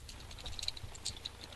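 Rapid, quiet clicking of fingers typing on a computer keyboard, a steady patter of small keystrokes with a low background hum.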